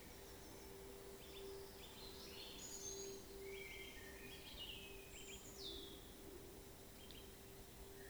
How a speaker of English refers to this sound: Focus on the blue shadows of the trees and the sound of the birds singing in the dusk.